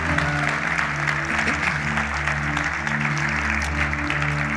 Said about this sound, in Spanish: Yo creo que eso se merece un aplauso, darle gracias a Dios por este país.